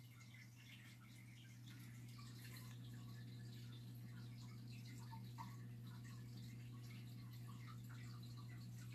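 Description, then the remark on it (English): A faint, steady trickle of running water with scattered small drips, heard over a low constant hum. No one speaks. “And we are going to try to figure out why I can hear that noise of water.”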